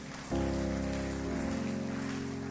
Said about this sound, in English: Oh, if you are clapping your hands, clap it well.